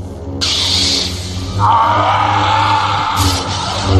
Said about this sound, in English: The caption said, growling, snarl. Snarl continues. That's the Sheev sound.